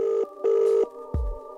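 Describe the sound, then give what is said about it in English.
Electronic telephone dialing tones as a caller phones in: two short, steady beeps followed by a sustained tone, broken by a low thump near the end. Clear, with no voices. “We have another caller, should be calling any time on his phone.”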